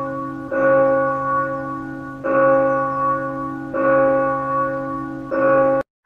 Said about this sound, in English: I was trying to find the church bells here while I was talking to you.